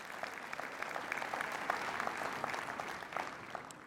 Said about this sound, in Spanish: Den un aplauso al Señor, que Él se lo merece. Amén.